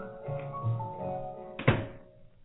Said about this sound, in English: There's too much noise around here. Will you wait till I shut the door, please?